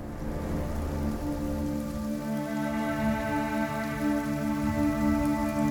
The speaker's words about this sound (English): And the rain? Yes, in this world, the rain is toxic. Called Timefall, since its discovery and first recording when the Death Stranding occurred, It has this name because of it essentially accelerating the passage of time for the objects and organisms